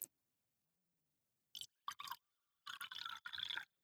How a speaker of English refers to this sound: Kirsty poured the water into the glass.